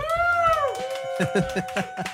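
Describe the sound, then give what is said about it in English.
A small live audience at Badass Backyard Brewing Company in Spokane Valley, Washington, cheers when asked to make noise, starting with a long, high 'woo' that slides downward, then a few sharp, loud bursts of whoops and claps in an uneven rhythm. “We have some people who are actually looking at me, so let's prove that we are live and you guys can make just a little bit of noise.”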